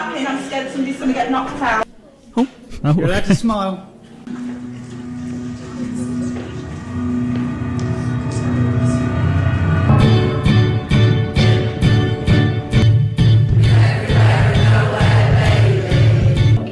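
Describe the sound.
The Oxford Tuneless Choir, an amateur choir of good and bad singers, sings a pop song in sustained, layered voices. After a short break the singing grows fuller and louder, with a steady rhythmic beat pulsing beneath it.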